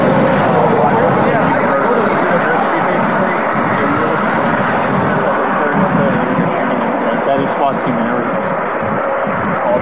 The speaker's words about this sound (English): I'm having a hard time hearing you because of the traffic.